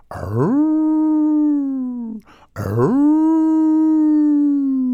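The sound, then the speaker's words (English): Two long, loud dog howls, each rising sharply then holding a steady mournful tone that slowly sags, separated by a brief breath-like pause. “The eerie stillness started to awaken all the dogs.”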